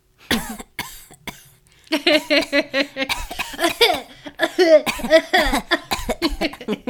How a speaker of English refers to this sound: … starts to basically have a panic attack and starts coughing.